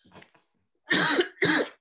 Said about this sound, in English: I'm talking so fast, I had to cough.